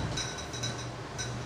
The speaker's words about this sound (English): That's not like the reaction of a Ouija board that you're hearing with the glass clashing and shit.